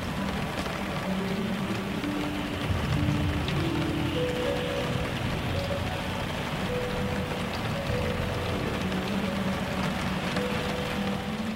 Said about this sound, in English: But then I started listening to the rain and listening to these odd notes of the harp that were just loud enough to be heard above the rain.